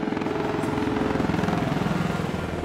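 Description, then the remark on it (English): A steady, pulsing helicopter rotor drone from a chopper gunner in a video game's Battle Royale mode, loud, with rapid rhythmic thumping over an engine hum and no voices. “Up, oh, chopper gunner.”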